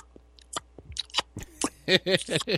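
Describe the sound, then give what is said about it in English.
A person imitates their dog's dry-mouthed smacking, which the dog makes all night, nonstop, when it refuses to drink water before bed: a run of wet clicks and lip smacks that quicken and grow louder into rapid, chewing-like bursts. “Dry mouth dog. All night, nonstop.”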